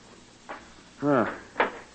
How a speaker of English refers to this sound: Now get this door open, Zagon.